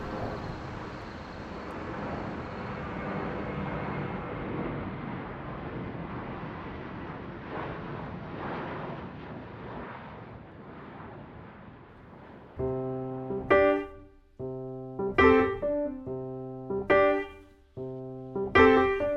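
A song intro opens on a steady airplane-like engine roar, then about two-thirds through, loud rhythmic musical chords come in, pulsing in repeated bursts.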